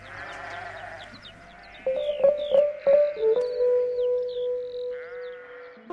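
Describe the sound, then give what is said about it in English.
A rock song played on air on community radio station 3CR in Melbourne, Australia, opens with sheep-like bleating over a steady, droning keyboard tone that swells at moderate loudness; there are no vocals. “And we'll just leave you with a song.”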